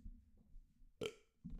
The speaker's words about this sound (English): I got a burp.